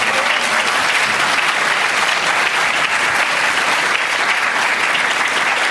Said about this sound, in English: As we can see from the applause, he hardly needs an introduction, but he is, of course, a professor at the Woodrow Wilson School, Princeton University.